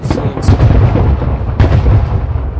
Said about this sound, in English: Those are some major fireworks. Yeah. I'm not seeing the actual fireworks. I'm seeing the tail of them. I'm seeing reflections off the other house. Yeah, I know. I'm seeing reflections off this house.